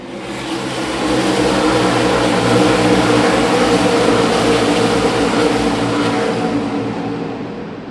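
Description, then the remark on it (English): A dense, loud roar of many stock car engines accelerating together at a green-flag restart after the pace car pulls off, a wall of mechanical noise rising steadily and holding at full intensity before easing slightly at the end, with no voices. “Pace car is down. Get ready. Green flag.”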